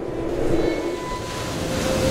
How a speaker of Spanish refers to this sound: Escucha el mar. Sintoniza 102.5 FM.